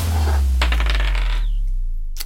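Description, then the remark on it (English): Dice clatter across a hard tabletop in a quick run of sharp clicks, then settle with a short, faint ringing tone. One last crisp tap comes at the end over a steady low hum. The dice are rolled for initiative in a game of D&D. “Well, roll for initiative.”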